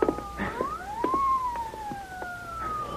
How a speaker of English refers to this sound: Yeah, listen. Police car. Yeah, that woman must have called the police, too.